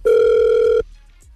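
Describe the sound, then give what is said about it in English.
A single steady ringback tone from an outgoing phone call placed from a radio station, loud, holding for under a second before cutting off into near silence. “I hope she answers the phone.”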